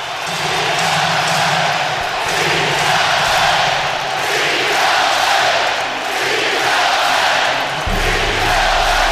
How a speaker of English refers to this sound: No outs, Austin Nola on third and Kim at second, and the crowd was at full power.